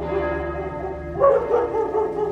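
dogs barking at night

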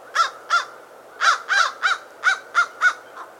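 american crow cawing

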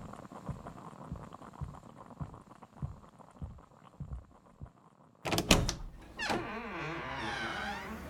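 knocking on a door

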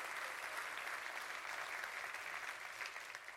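audience clapping hands

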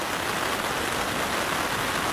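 heavy rain pouring down

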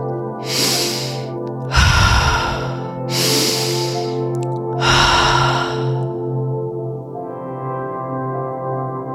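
deep breathwork breathing

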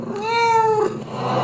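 cat meowing

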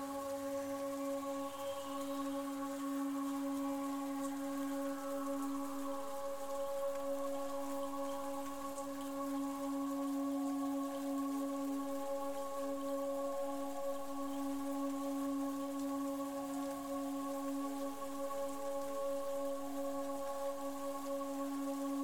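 rain falling

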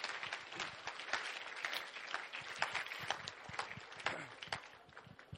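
audience hand clapping

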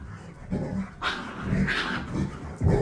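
dog whining

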